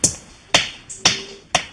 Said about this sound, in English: The monkeys whack the hard nuts over and over again. This is captured on videos.